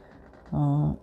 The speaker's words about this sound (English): So the easiest way to get a straight line with your fabric is really to cut a little nip and tear it. And it likes to tear along a straight line more often than not.